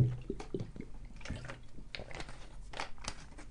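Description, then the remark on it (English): Someone takes a swig of water: quiet liquid sloshing, soft wet gulps and a few small clicks and crinkles, with no talking. “Let me take a swig of water.”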